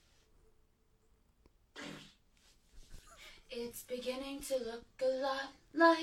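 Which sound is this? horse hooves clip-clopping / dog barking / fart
fart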